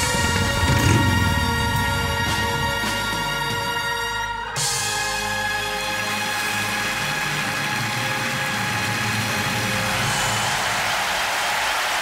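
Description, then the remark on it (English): A steady drum roll blends with sustained applause for a guest on the Biker Radio broadcast, a dense, loud wash of clapping that runs unbroken for the whole stretch, with a brief dip partway through and no voices. “that drum roll and that applause is all yours.”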